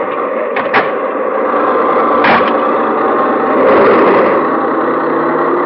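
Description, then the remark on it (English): A car engine runs with a steady, dense rumble, broken by a couple of brief mechanical clunks, then swells slightly louder as the car is put in gear by someone who has gotten out of it. No one speaks. “You get out of the car, put it in gear...”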